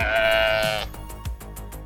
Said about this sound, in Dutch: Ja, schaap uit Californië.